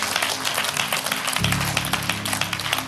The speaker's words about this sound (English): Oh, clap your hands for God.